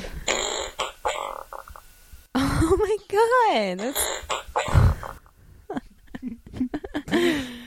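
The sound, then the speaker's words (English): A loud, buzzy fart sound effect called "Rectal Bismol", with a wobbling, sliding pitch, runs for about three seconds, ending in a low sputter. People talk and exclaim before and after it. “beer can open or pop the top pop the fart. Pop the fart is very close.”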